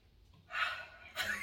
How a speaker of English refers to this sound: Breathing so hard.